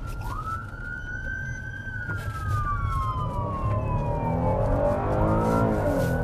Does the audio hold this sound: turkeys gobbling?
no